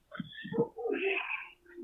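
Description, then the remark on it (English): Dogs outside whine in short, high-pitched bursts that waver in pitch, moderately loud, across about two seconds with a brief lull near the end. “No more dogs.”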